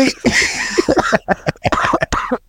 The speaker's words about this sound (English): can't even laugh without coughing.